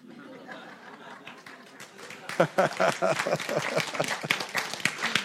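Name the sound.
spontaneous round of applause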